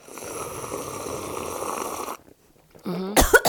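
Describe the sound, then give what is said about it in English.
A long, noisy slurp of coffee, then a brief pause before a sharp, loud cough bursts out near the end. “I intentionally swallowed with no cough. It's you today.”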